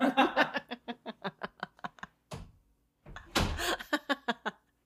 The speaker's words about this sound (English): You gotta shut the door. Yeah, I'm gonna go shut the door really quick.